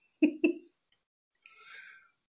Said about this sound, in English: But yeah, no, I apologize for my silent yawn that wasn't so silent.